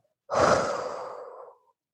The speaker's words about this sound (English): And when you're breathing out, making sure to breathe out of your mouth with force, like this.